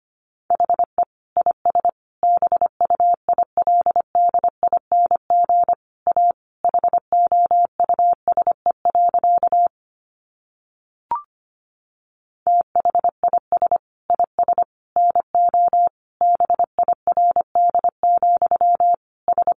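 Rapid Morse code beeps at 25 words per minute, sending a sentence built from the top 700 words, at a single steady mid-high pitch, keyed in quick dots and dashes, with a short pause and a faint click midway before the sending resumes. No voices.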